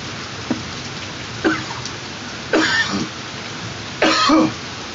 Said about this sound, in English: Ooh, I see the thunder and the lightning out this mug. We live though in it, you know what I mean? We in it, in the trenches. Y'all hear it? Y'all hear it? I can feel it.